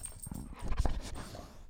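A dog named Moro whimpers softly, a brief whiny vocalization with a slightly panting, breathy edge, heard alone without any talking.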